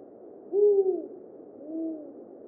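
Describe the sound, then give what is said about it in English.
A spotted eagle owl, which briefly lived in the flowering gum trees outside the library at Reddam in 2007, gives two low, mellow hoots about a second apart, the first stronger and the second softer and trailing off, against a faint steady background hiss. “Firstly, to the spotted eagle owl that briefly resided at Reddam way back in 2007.”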